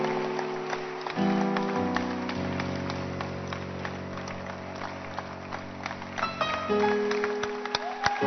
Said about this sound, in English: Don't stop clapping. If I have not finished, you can't stop clapping.